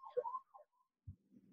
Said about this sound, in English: So now that the sirens have subsided, I actually think that could have been either Pence or Trump, because I'm here on 16th and it's a straight shot down to the White House one way and like up to where Pence lives, which is the Naval Observatory